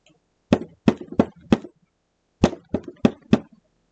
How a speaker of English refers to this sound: Jay, listen, that knocking. How funny it sounds.